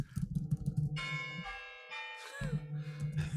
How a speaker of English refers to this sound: The chimes of the new year are upon us here.